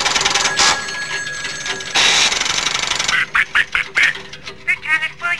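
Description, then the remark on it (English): A squawky, cartoon duck-like quacking voice rattles off a quick burst of nasal, choppy syllables near the end, following a few seconds of harsh, hissy noise. “They talk like a duck. Like, think a Donald Duck's like style voice.”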